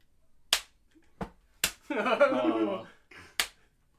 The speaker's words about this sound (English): last slap. That's good. Man. He just turns around and clocks him.